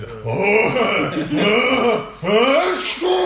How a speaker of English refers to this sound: I'm just about to cough, hang on. One Christmas. Was that a real cough? Yeah. Stop it. That sounds like my dad when he's trying, when he's getting ready to sneeze.